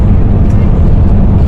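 A big self-driving semi truck's engine drones loudly, a dense, low rumble that holds steady throughout as the rig accelerates forward under power on a test drive.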